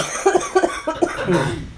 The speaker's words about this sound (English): I'm going to just start coughing uncontrollably because I have a cold.